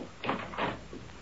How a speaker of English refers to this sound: That must be Miss Tarcher. Open the door